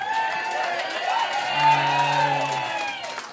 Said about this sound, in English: Like, they all know this joke and they cheer for it and then I tell it and then they don't laugh.